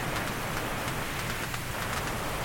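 Steady rain hisses without a break, a dense wash of noise with faint individual drops pattering through it. Nobody speaks.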